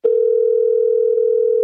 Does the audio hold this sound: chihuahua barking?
no